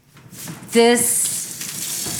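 Water boils in a pot with a steady hiss and crackle of bubbles. A brief tonal hum rises over it for a moment, then the bubbling carries on evenly.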